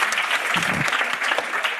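Steady applause from an audience fills the short moment, a dense wash of many hands clapping at once, fairly close and loud, with no pause or build throughout.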